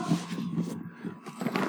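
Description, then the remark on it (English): A dog makes a low, rough, grumbling noise, holding steady for a moment with a brief dip before rising again. “This dog.”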